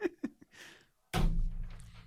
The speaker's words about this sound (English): Hey, that's the end of the episode. We know it's the end of the episode because there's a knock, knock, knock at the studio door.